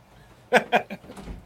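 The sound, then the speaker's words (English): A door is opened to let a pet in, with three quick clattering knocks of the latch and frame in a row, followed by softer shuffling and a low thump as it swings. “He's going crazy inside the door. I let him in now.”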